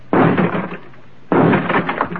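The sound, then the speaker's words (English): Two loud, sharp gunshot blasts about a second apart, each with a crashing, splintering tail as a door lock gives way. The blasts stand alone, with no voices. “Stand away from the door. I'll have to blast the lockout.”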